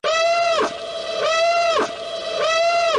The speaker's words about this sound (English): So this is a huge spoiler, if it's true. You know, I'm going to put the alarm on one more time.